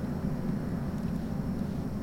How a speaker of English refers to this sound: I gotta know where that plane is going. Let's look this up right now. We're finding this plane. We're just doing it.